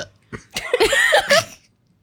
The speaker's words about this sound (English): I need a burp.